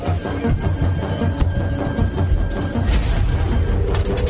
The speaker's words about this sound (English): Sometime in the early morning hours, I get a call.